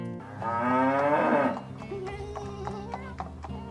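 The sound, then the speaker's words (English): A cow named Moo Moo gives one loud, drawn-out moo, then steady clip-clopping hoofbeats follow as it sets off for Bluebird Gulch, with faint background clatter. “Hi ho, Moo Moo! Away!”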